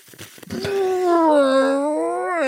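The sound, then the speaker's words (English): A voice imitates a loud, drawn-out fart: a sustained, droning vocal tone lasting about two seconds, its pitch sagging slightly and then lifting at the end, preceded by a few short sputters. “Or just a very loud, great kind of whoopee cushion style fart.”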